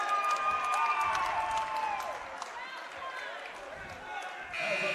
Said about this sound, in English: Liga Northeast fans sarcastically clapping finally for a foul. Their first foul on Grand Island comes with 2:13 left on the clock here in the first half.